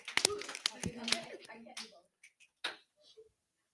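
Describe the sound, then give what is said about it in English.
A quick burst of sharp finger snaps mixed with a hand clap, crisp and irregular, followed by a few faint short sounds as a voice murmurs softly in the background. “That was a good snap and clap moment.”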